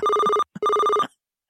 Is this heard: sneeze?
no